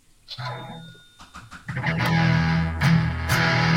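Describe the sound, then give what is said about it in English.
A distorted electric guitar played through a Digitech Hot Rod Rock Distortion pedal plays a few choppy stabs, then settles into thick, sustained chords with a gritty, saturated tone, loud, with no talking. “I'm actually using the the recently acquired in Austria Digitech Hot Rod Rock Distortion pedal”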